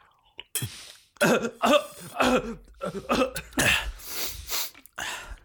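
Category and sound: human body sound, coughing fit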